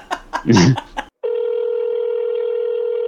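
telephone call ringing

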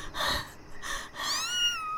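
cat meowing

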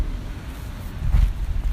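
wind blowing through trees

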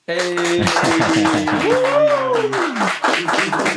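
hand clap

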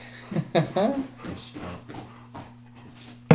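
dog whimpering and yipping

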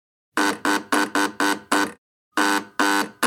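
buzzer sounding

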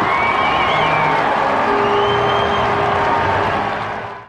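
baseball stadium crowd cheering

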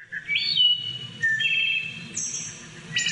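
wood thrush song

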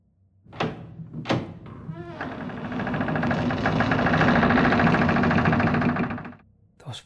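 doors opening and closing

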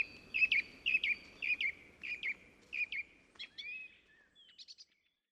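birds chirping and singing

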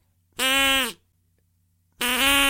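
duck call being blown

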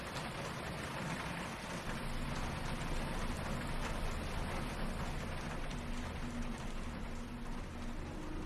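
raindrops hitting the sidewalk

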